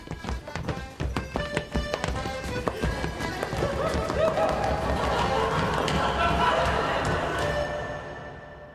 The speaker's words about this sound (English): But it lives on as a dance. A dance that, for centuries, was done nowhere else but in Harbour Deep. A pattern of steps called running the goat.